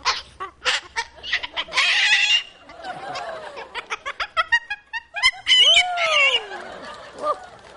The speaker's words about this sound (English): Singing and all. Yeah, what a great bird you are. What a great entertainer, hey?